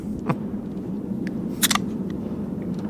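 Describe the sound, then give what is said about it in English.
A Budweiser beer can cracks open with a sharp double click and brief burst over a steady low rumbling background; no one speaks. “What was that sound? Beer can. You're drinking beer?”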